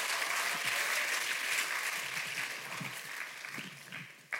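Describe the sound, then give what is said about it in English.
A crowd applauds steadily in praise of Jesus during a preacher's message, a dense wash of many hands clapping at once with a few sharper individual claps standing out, holding a fairly even loudness throughout. “Oh, come on, you can clap better than that.”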